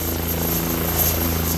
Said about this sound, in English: And now this bright yellow helicopter lifts off the banks of the Mississippi River, and it heads toward a landscape that's vanishing.